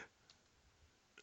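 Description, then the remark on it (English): A few soft, scattered clicks of keys being tapped on a keyboard while typing in a chat, irregular and sparse, faint against a quiet background with no talking. “I'm typing at Cozy in the chat.”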